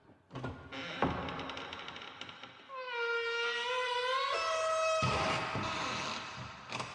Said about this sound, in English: But Nanny brought Clarissa down a narrow hallway to a door. Nanny opened it.